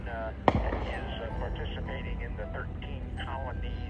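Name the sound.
fireworks exploding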